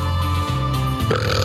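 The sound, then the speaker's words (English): A loud, drawn-out burp rumbles, its low croaking pitch shifting a couple of times over about a second and a half, with no talking. “Excuse me, please stop burping”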